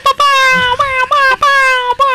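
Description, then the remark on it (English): A voice imitating a Star Wars laser: a loud, high-pitched, buzzy tone broken into about five quick bursts, each sliding slightly downward in pitch, with brief gaps between them. “It's more of like a Star Wars laser sound.”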